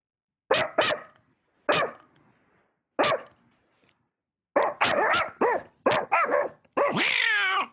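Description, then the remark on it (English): A dog barks in sharp bursts: a quick double bark, two single barks, then a rapid flurry ending in a longer, strained howl-like yelp. “Oh, there's a dog.”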